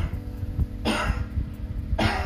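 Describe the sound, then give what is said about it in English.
Two harsh coughs, about a second apart, close and fairly loud against a low background hum, with no talking. “Perhaps this system could be tailored to monitor the key respiratory symptoms associated with COVID-19, which are shortness of breath and coughing.”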